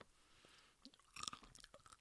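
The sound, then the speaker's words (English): Crisp crunching of gluten-free, whole-grain Popcorn Indiana popcorn chips from a bag being chewed, a few sharp bites followed by irregular crackly chomps over about two seconds, with no talking. “Yeah, where else can you go and hear somebody crunch popcorn chips online?”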